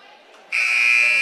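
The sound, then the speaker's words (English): A loud, sustained electronic buzzer at the scorer's table of a basketball game blares abruptly about halfway through and holds steady to the end, following a stretch of quieter arena murmur; it calls the officials over to the table with 10 seconds left in the fourth quarter. “And the officials are buzzed over to the scores table.”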